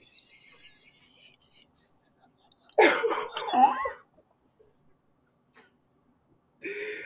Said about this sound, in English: I would like to take this moment to apologize for my cough.